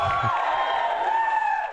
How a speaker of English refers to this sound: Well, I think the crowd's very excited by that.